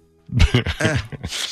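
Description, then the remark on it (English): A sneeze: a few voiced, gasping build-up sounds followed by a sharp, hissing burst of breath at the end, fairly loud and with no talking. “Sneeze.”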